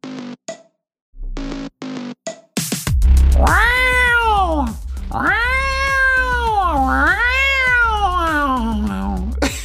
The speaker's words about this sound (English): Imagine if your cat started riffing like that.